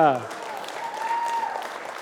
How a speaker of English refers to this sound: These people are all clapping because they love you.